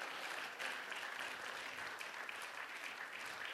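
A crowd gives a hand clap of praise to God, a dense wash of many hands clapping at once, sustained and fairly loud throughout with no voices standing out.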